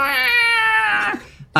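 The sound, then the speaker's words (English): A single drawn-out yowl from a fluffy black cat, loud, holding a steady whining pitch for about a second before fading, followed by a brief click. “it is a fluffy black cat.”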